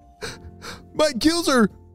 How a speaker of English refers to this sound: As she swam up to the surface of the water, she gasped for air.